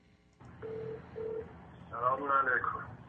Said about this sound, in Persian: یک هممیهنی تلفن زده به قاضی براتی.